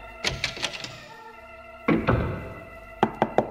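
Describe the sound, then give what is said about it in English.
Knocking on an office door in bursts: four quick raps, a heavier thud, then four more sharp knocks, over a faint steady background tone. “open the door to your opulent office. I know you're in there.”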